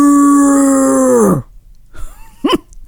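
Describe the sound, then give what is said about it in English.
A person imitates a cow for the punchline of the "interrupting cow" knock-knock joke, with one long, loud, steady "moo" that holds its pitch for over a second before sliding down, followed by a few brief, quieter vocal sounds. “Do you remember the interrupting cow joke?”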